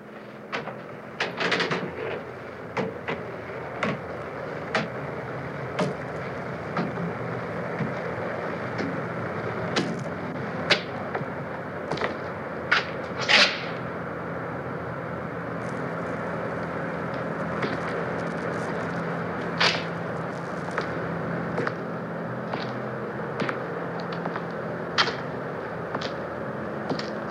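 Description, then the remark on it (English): Footsteps of someone walking across the empty sixth floor of the depository building, on old wooden floorboards: a scattered series of sharp knocks and creaks at an uneven pace over a steady background hiss, with no voices. “It is quite an eerie scene, as all you hear are the footsteps on the old wooden floors of the depository.”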